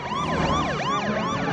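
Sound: ambulance siren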